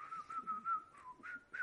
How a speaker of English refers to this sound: Sammy walked down the hall whistling to himself, ….